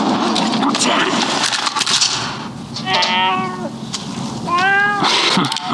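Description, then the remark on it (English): A black shorthair cat hopping up onto an oil barrel in a dark garage lets out two drawn-out, whiny meows in quick succession, loud, over a constant rough, crackling background noise. “Kid bumps into an oil barrel and the noise draws the attention of the gangsters, but a black cat saves the kid by hopping up onto one of the oil barrels. Classic cat scare.”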